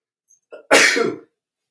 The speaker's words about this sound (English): Pardon me. I did not want to sneeze on screen.